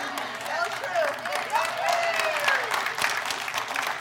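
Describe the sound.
An audience claps steadily for about four seconds, a dense, even patter of many hands with a few voices calling out over it, clapping for Abilene being called great.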